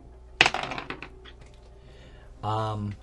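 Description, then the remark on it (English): Dice rolled for a perception check clatter onto a table in a sharp burst of quick, bouncing clicks that rattle briefly and fade, followed by a short stretch of quiet and then a brief voice. “Roll me a perception check at the same time.”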